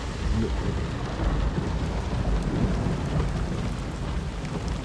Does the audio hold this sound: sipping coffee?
no